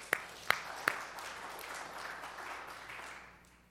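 A studio audience applauds a volunteer from the audience called up to the stage: a few sharp, distinct claps ring out first, then a steady, moderately quiet wash of clapping carries on for several seconds before tapering off.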